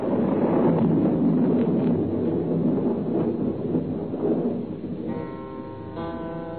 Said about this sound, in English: The wind came. The storm was beginning. Already I knew it would be raining in the estuary.